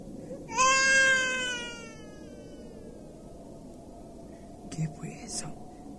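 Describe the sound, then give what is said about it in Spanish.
A baby (guagua) cries out from behind some chilca shrubs once in a loud, drawn-out, high-pitched wail that slowly falls and fades, followed after a pause by a few brief, soft breathy rustles. “Escuché el llanto de un guagua.”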